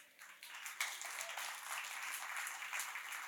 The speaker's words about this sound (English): Three-fourths of the people are clapping, and one-fourth of the political people are like, dang it.